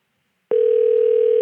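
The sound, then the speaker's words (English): A telephone ringing tone comes over the line of a call to Sephora Gallery after a brief silence: a loud, steady electronic hum that holds unbroken to the end, with no one speaking. “The ringing is a good sign, though.”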